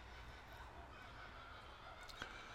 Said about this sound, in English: Listen to those birds. I love the birds.